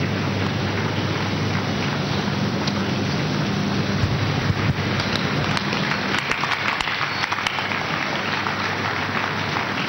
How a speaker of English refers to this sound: I did not see what you are clapping for. Until I see what you are clapping for, I will join you. I pray I will see what you have seen. Can somebody tell me, what have you seen and you are clapping? Can somebody? What? You are clapping?